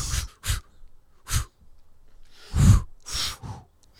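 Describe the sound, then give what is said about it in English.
A person blows air out through the mouth in several short, breathy puffs, fairly loud, spaced irregularly with quiet pauses between, the last two longer and stronger. “I'm breathing in air from my my armpit, that, and then I'm blowing fresh air back over”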